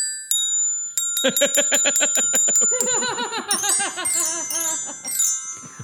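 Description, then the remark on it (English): Bright, ringing glockenspiel notes play a quick melody, with a few spaced strikes at first and then a rapid run, their high tones sustaining while laughing voices bubble underneath. “Wait, it might be clearer if I play it on the Glockenspiel.”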